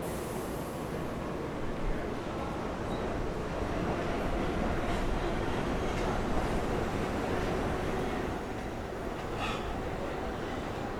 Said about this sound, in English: And waiting here for the subway is not helping it any better.